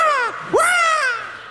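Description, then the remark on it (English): A voice imitates a crow's caw: two loud, drawn-out squawking calls, the first sliding downward and the second rising sharply then holding, with no other talk. “Ladies and gentlemen, welcome the bird. 6 foot wings and all.”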